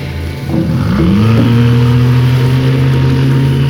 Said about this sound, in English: We should let Mr. Q concentrate on driving the boat.